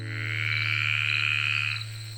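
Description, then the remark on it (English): A dense chorus of croaking frogs trills steadily in a swamp, many voices blending into a continuous pulsing drone with a low hum beneath, then thinning out near the end. “Wow, just listen to that cacophonous chorus of swampy singers. Tell me some frog facts that you know.”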